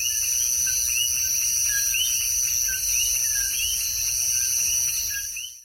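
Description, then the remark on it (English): Coqui frogs call in a dense chorus of two-part "co-qui" calls, short rising chirps repeating from several directions over a steady, shrill insect-like background hum, with no voices present. “And then the second part of their song, the key, the Q-U-I, that's how it's spelt, indicates to any females in the area how they are obviously the best mating choice, as opposed to the other 20,000 frogs in the nearby hectare.”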